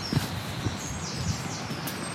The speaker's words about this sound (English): Beneath some oak trees and a few more sycamores again. Wind whistling through the trees.